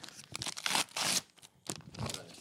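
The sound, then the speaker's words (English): Crackly Christmas wrapping paper printed with little happy Santas and stuck down with lots of tape, being torn off a gift in several uneven ripping bursts, with brief pauses between pulls and no talking. “Oh, there's a lot of tape on this.”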